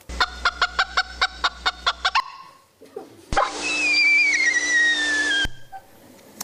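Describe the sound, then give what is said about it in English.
Predator alarm calls of a bird species that has two different predator alarm calls: first a rapid, evenly paced series of about nine sharp, clucking notes, then a loud, harsh, drawn-out scream with a slowly falling whistled tone. No talking. “Oddly, this paper has not made it into the textbooks and is not as widely known, maybe because they only have two different predator alarm calls rather than three.”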